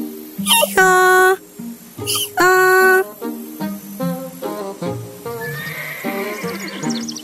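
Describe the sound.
Voices imitating a donkey's bray: two loud, harsh hee-haw calls in quick succession, followed by a stretch of softer, wavering vocal noises.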